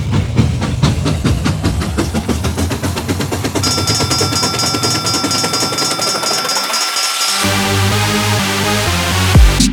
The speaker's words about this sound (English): But hold on tight. I think this train's about ready to move.